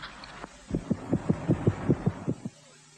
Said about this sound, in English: Not only is it quick, but there's the sound of a racing heartbeat during those few seconds, which I thought was a nice touch.